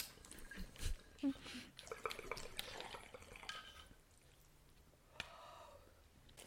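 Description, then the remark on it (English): Bong water bubbling in a quiet, irregular gurgle of wet pops and drips for about four seconds, then tapering to a soft hiss with one sharp click. “Oh, wait, I never even sucked my bong.”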